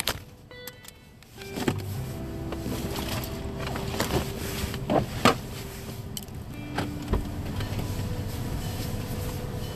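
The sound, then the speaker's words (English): A car engine starts rumbling after a quiet moment and holds a steady low drone as the car pulls into a gas station, with a few sharp clicks and thumps over it and no talking. “sorry, I'm driving here and trying to pull into this gas station to make sure that my lights are all uncovered, and I don't know if they are.”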